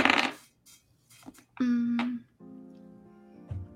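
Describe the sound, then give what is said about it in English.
A quick clatter of dice, including a six-sided D6, tumbling and settling on a table, fairly loud, followed by brief voiced sounds and a steady hum; the roll comes up 6. “That is gonna be a 6. Okay. So I will use the temptation dice.”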